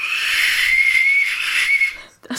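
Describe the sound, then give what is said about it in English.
A toy plastic saxophone from a pound shop blows one long, shrill, reedy note held fairly steady for about two seconds, then cuts off before a short squawk at the end. No one speaks. “I can see a plastic saxophone in one of your toy baskets.”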